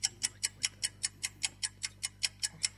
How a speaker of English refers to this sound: Can we hear the clock? You can.